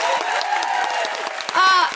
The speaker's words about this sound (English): A huge round of applause for the incredible Jayde Adams. Stephanie Yeboah. Everyone at the New Normal Festival.